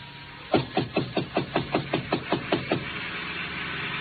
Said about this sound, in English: I got to Chinook's and it was closed. I knocked on the door.